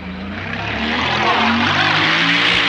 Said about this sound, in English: But you hear the loud truck and know that's not a scene shift. They're literally on one corner of the building. You see Blockhead drive directly behind them very loudly.